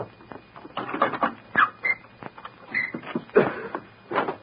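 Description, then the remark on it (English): A small dog yaps in a quick, uneven series of sharp, high barks, moderately loud, with brief gaps between bursts and no voices. “Stop the little dog!”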